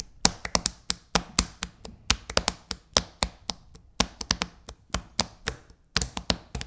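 Hands drum a quick beat on a tabletop: a steady run of sharp, dry taps with a loosely uneven rhythm and occasional louder accents, with no talking over it.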